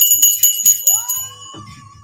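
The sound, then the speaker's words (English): A bright bell rings with a few quick, shimmering strikes at the start, then its clear high tones hang and slowly fade over about two seconds, with no one talking. “Bells to that.”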